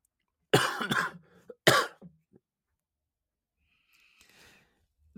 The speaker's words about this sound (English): Yeah. Sorry. I had a coughing spell. We're all good.